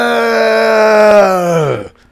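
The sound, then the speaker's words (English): A person lets out one loud, sustained yell, a low, steady voiced roar held for nearly two seconds before its pitch sags and it cuts off into silence. “This is me yelling.”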